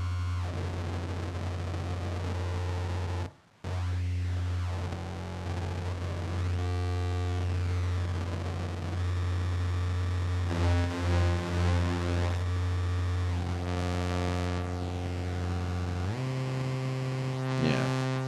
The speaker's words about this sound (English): So this would be, in a sort of normal audio terms, a bit crusher, but it's all using completely analog circuitry, which gives you these nice, like, strange behaviors. When you play with track, it can't really decide what it's doing.